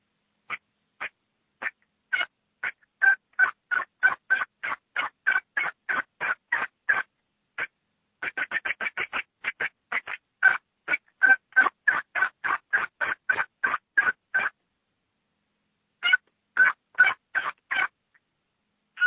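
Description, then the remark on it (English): A turkey call imitating an excited hen yelp: long runs of sharp, raspy yelps and clucks, loud, coming in quick rhythmic bursts with brief pauses and a few scattered notes at the end. “an excited hen yelp, which is usually what I try to do to get that bird fired up.”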